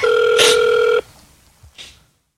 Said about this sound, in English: I'm just going to enter this access code on this site. Oh, it's ringing. Oh, God.